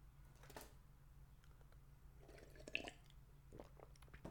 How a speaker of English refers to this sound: All right. And quick sip of water. Water break, boss. Don't mind me, boss.